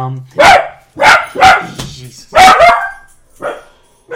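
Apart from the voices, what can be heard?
dogs barking and fighting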